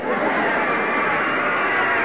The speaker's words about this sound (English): Oh, they're getting a big cheer, folks.